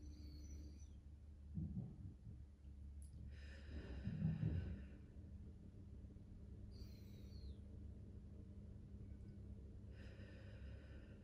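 Several slow, deep breaths drawn in through the nose, filling the belly rather than the chest, soft, arriving every few seconds over a low, steady ambient hum, with no talking.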